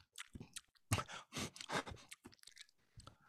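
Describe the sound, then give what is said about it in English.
Wet, crunchy chewing of a woman eating food at a restaurant, with irregular bites and smacking bursts repeating over a few seconds, loud and exaggerated like a sound effect, no talking. “I could hear her chewing from two tables away.”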